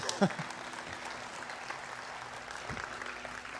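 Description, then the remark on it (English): An audience breaks into steady applause, a dense wash of many hands clapping at a moderate level, with a sharp louder clap near the start and faint voices mixed in. “You can clap.”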